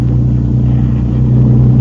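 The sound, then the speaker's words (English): A motorboat engine drones loudly and steadily, a deep throbbing rumble with a low pitch that swells slightly toward the end as the boat swings around among rocks, with no voices over it. “You swing the boat around.”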